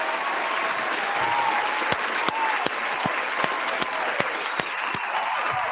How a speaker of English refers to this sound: Round of applause for the chat once again, man. Feel me?